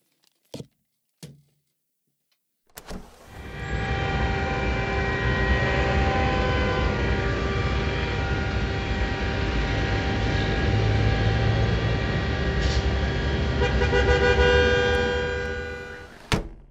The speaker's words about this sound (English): It's busy. It's very busy out there. Lots of trucks.